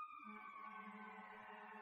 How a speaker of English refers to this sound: The sirens agree.